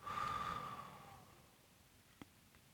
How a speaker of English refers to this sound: But as you finish releasing that tension, go ahead and take a deep breath in through your nose and out through your mouth. One more deep breath in through your nose and out through your mouth.